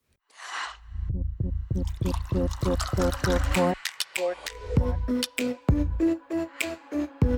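A drink is poured into a glass: a quick splash, a steady run of rhythmic glugs, then brighter ringing trickles as the glass fills. No one speaks.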